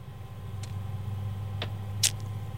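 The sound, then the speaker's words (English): Three short, crisp rustles of newspaper pages spaced about a second apart, the last one the loudest, over a steady low hum with no talking. “Do you hear the paper yeah. rustling?”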